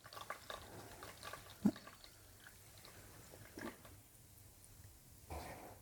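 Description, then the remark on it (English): A faint, steady trickle of tea called Inner Master being poured into a cup, the fourth pour, with soft drips and a small clink partway through, with no talking. “The fourth pour.”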